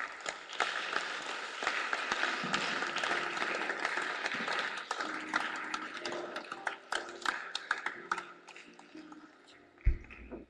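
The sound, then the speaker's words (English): An audience claps together in a dense, steady burst of applause that thins out over the last few seconds, ending with scattered claps and one louder thump. “I sure you were clapping.”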